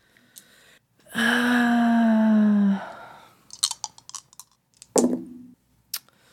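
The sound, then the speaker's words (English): A drawn-out vocal tone, then a quick scatter of sharp, light clicks as dice are rolled on a tabletop for an "Act Under Pressure" roll, followed by a short voiced sound and one last tap. “Can you roll Act Under Pressure for me? I sure can.”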